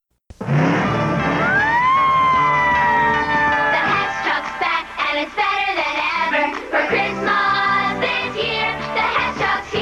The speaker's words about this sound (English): A truck of heroic proportions. Hess Fire Truck 2000, built for action. Cool flashing lights, a real horn and siren, and a giant ladder that goes up, up, and away.